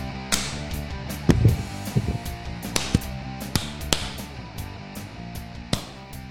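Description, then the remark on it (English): Several sharp, loud hand claps ring out at irregular intervals over a steady tonal background resembling music, each clap a crisp, brief smack. “Let's give it a good clap.”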